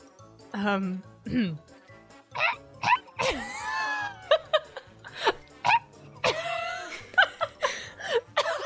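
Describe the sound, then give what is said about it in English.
A person imitates a pheasant call with a string of short, sharp vocal bursts like polite little coughs, mixed with squeaky rising and falling tones and bits of chuckling. “Why is your pheasant politely coughing”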